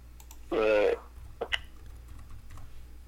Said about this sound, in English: So I'm typing these to him.